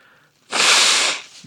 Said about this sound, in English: hang on a second, I need to blow my nose.